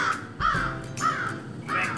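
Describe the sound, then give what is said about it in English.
A crow caws three times in a steady rhythm, each harsh call loud, with brief pauses between them and no talking. “Wake up. Says the crow.”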